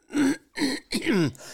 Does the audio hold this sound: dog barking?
no